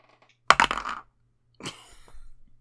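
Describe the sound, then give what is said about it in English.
Dice rolled for perception checks clatter and tumble across a tabletop in two short bursts, a sharp rattling roll followed by a softer, longer skitter as they settle, with no talking. “Okay, roll me perception checks.”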